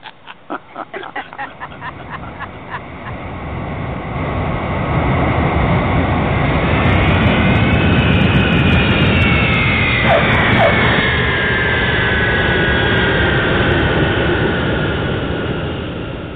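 An Eastern 479 jet airliner lands on runway 18 left at Orlando under autopilot, its engines building from a brief rapid rattle into a loud, sustained roar with a high whine that shifts and bends in pitch.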